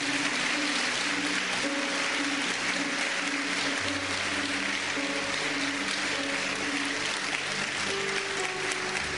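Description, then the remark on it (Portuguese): Audience applause fills all nine seconds, a dense, steady wash of many hands clapping at an even loudness, with sustained low musical tones faintly beneath it and no talking. “Uma salva de palmas.”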